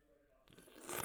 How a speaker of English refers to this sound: Okay, that was me taking a sip of LaCroix. I needed just to make sure that we weren't leaving another edge of silence.